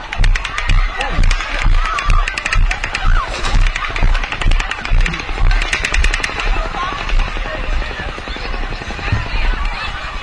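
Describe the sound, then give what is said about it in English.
Rapid, sustained gunfire in a video being watched crackles in dense bursts. The shots come fast and sharp and peak in a quick rattling stretch midway, over a loud, busy background with voices mixed in. “There's more gunfire.”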